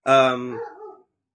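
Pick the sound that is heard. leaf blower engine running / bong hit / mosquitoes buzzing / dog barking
dog barking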